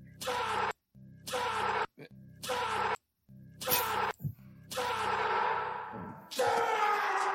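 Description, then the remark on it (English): A voice groans in a series of drawn-out bursts separated by brief silences, each one swallowed by a heavy, cavernous echo that smears and lingers as the sounds grow longer toward the end, in a scene from the film Blade Runner 2049. “It's such a great echo.”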